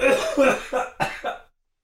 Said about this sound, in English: Sorry. I am not burping, but I'm coughing.